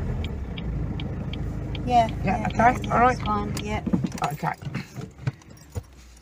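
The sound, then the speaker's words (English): A car pulls over and parks outside a graveyard, its low engine rumble winding down and stopping, followed by clicks and a light jangle of keys; people talk briefly over the engine. “I'll tell you what, we'll park outside the graveyard. All right, okay. Right, you should pull over here.”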